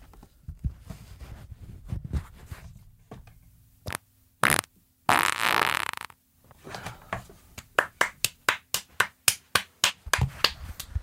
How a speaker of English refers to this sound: I don't know why the past two podcasts have been me farting into the mic. I'll stop after this one, I promise.